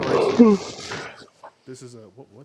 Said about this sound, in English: I yawned. I thought I was going to cough.